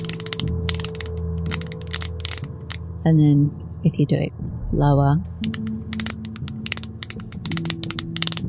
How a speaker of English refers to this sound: it's makes a sort of clicking noise. If you do it really gently, it sounds sort of... reminds me of a zip. If you were to pull up a zip, that kind of sound. I'm going to do it nearer to the phone so that hopefully you'll be able to hear it properly.